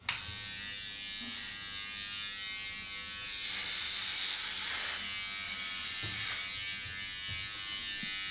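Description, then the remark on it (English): An electric hair trimmer buzzes steadily for several seconds, its motor tone shifting slightly as it runs, with a few faint clicks and no voices. “That was a hair trimmer.”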